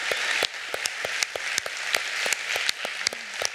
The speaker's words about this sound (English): And when we clap, what that means is we're clapping to give them encouragement as well as to give God glory for what he's done to bring tragedy, to bring triumph out of tragedy.